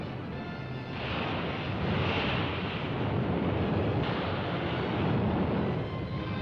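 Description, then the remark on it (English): Loud, continuous roar of pounding storm surf against a jagged, rocky coast where a tanker has been cast upon the rocks, with a rushing wash that swells and eases slightly, blended with wind buffeting; no voices are heard. “While the pounding surf completes nature's job of destruction, rescuers work desperately on the jagged coast to pull survivors from the sea.”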